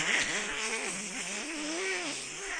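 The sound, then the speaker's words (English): A voice imitates the white noise played while a sidebar was going on: a steady, breathy hiss with a faint wavering hum underneath, held evenly for about two and a half seconds without any words. “While that sidebar was going on, they played this white noise.”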